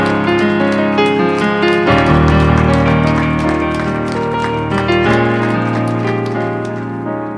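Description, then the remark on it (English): A church audience claps together during a service in a dense, steady patter of many hands, loud and continuous, over sustained organ-like musical chords that shift in pitch partway through. “One more hand clap to the Lord for your seated.”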